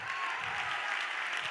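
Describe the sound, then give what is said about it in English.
Steady audience applause fills the moment, a dense wash of many hands clapping at once, moderately loud and continuous without any voices standing out. “Oh, you're clapping like that's cute.”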